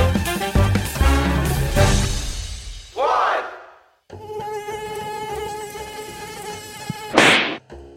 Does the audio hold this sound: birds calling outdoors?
no